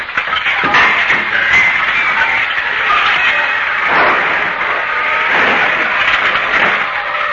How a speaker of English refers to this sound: Begging your pardon, and with all due respect, but if you were to give that car a good kick like so...